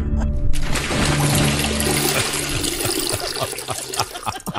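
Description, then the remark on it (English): A toilet flushes, a loud continuous rush of water that gurgles and slowly thins toward the end, with no voices present. “Hey, I'd pee on you golden girls, but my prostate's so enlarged, I'd only dribble.”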